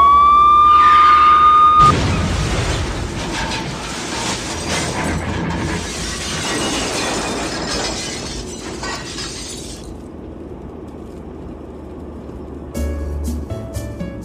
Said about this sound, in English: Unfortunately, no one saw the police car swerving, trying to get past. The car you were travelling in smashed straight into it and sadly killed everyone in both vehicles.